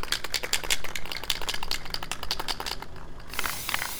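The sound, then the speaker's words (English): A spray paint can is shaken by Japanese tourists at a shop in Bethlehem, who then use a stencil to paint a kneeling woman struck by an arrow; its mixing ball rattles in a fast, steady clatter of sharp clicks, pausing briefly near the end before resuming. “Some shops even keep spray paint on hand and charge folks like these Japanese tourists to use it. Shake the can.”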